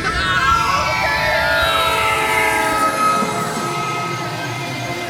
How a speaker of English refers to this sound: You're right, and he hasn't seen the train coming.